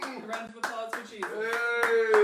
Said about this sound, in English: Round of applause for Jesus.